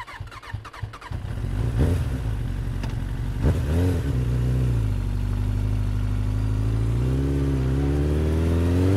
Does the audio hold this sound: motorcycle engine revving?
yes